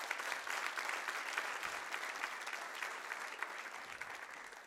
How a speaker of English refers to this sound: Give them a clap. Thank you so much.